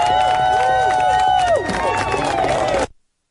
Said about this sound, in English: So I want to hear a big, long New York round of applause for every single organizer who has pushed this through the years.